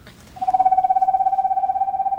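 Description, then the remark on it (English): A male screech owl's call played back during an owl prowl: a steady, monotone whistled trill of rapid even pulses that starts abruptly and carries on for nearly two seconds, fairly loud, with no talking. “The sound you hear is a male screech owl.”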